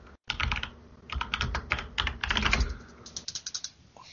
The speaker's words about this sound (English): If anybody wondering what the clicking is, I have a mechanical keyboard, and that's why you hear what you hear every once in a while.